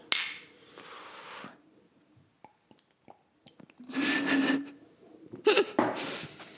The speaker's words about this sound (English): And now we're having the first podcast with beers. We have to do the sound. Yeah. Sound. Cheers.